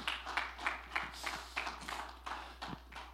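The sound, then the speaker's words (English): A group of people clap their hands to the Lord in worship in a steady, brisk rhythm, roughly three claps per second, each clap a sharp, full-bodied burst ringing slightly. “Let's clap our hands to the Lord right now.”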